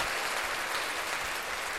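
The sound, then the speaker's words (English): Steady applause from a crowd: dense, crackling clapping that holds an even level throughout, with no voices standing out above it. “Ah, you get applause.”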